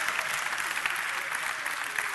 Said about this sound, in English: Go ahead, you can clap. Go ahead.